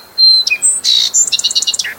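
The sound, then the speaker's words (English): A songbird in a backyard sings alone: a sustained high whistle, a few quick sharp notes, a buzzy burst, then a rapid, evenly spaced trill of bright chirps. “Backyard birds like the towhee and the song sparrow will pick and kick through leaves again and again.”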